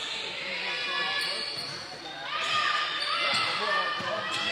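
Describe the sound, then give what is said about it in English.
A basketball bounces on a hardwood court in a few scattered thumps as a player dribbles it during a women's basketball game, heard amid a steady wash of gym crowd noise and murmuring voices that swells partway through. “Shaylin Anthony crossing the timeline, going to the right. Picking up her dribble.”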